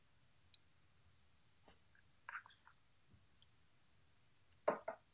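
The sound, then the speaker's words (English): Quiet chewing of food: a few short, crunchy bursts separated by near-silence, the strongest pair coming near the end, with no talking. “I'm starting to eat now.”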